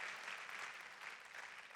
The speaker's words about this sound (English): Come on, clap like God's gonna come through for you. Clap like God's gonna come through for your family. Come on, clap like God's gonna come through for your church.